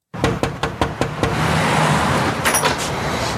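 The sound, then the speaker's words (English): Around seven quick, evenly spaced knocks rap on Laura Moore's front door as Shorzy knocks, fairly loud, then give way to a steady low rumble like passing traffic. “Next scene, cut to Shorzy knocking on Laura Moore's front door.”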